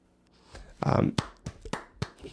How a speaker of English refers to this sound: A round of applause.